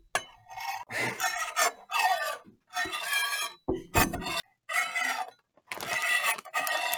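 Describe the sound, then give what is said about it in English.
A voice imitates knife cutting with a run of breathy, rasping scrapes, about eight short bursts in an uneven rhythm, loud and harsh with brief gaps between, no words spoken. “Oh, did you want to make the knife sounds you were doing?”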